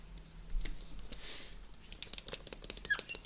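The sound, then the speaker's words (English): A pen that is running out, bought from Poundland, scratches and squeaks across paper in quick, uneven strokes, fairly quiet, with a soft breathy rush partway through and no talking. “Oh, a little squeaky pen then. My pens squeaky bubble time. My pen's running out.”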